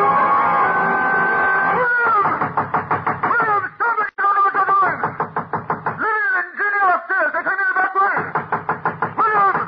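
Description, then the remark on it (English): Rapid, steady hammer blows pound nails into heavy wooden boards being nailed across a door, loud, with brief pauses between bursts of strikes. “As I nailed the boards across the door, I felt as if I were driving nails into his top.”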